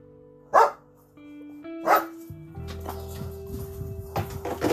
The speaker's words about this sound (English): My dog trying to bark at me. You don't want none of this right now.